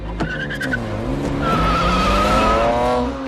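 Tires squeal in a long, high-pitched skid over the steady growl of a revving car engine, loud, with a few sharp knocks early on and no voices, in a car chase from the film Ronin.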